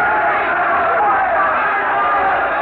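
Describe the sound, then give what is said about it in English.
A dense, loud crowd in Florence roars continuously, many voices shouting and yelling over one another in an agitated, chaotic uproar with no pauses, as the Compagnacci attack a man in the crowd and others rush to his support with swords and daggers. “The Compagnacci are attacking the man in the crowd. But he's not alone. Others are rushing to his support.”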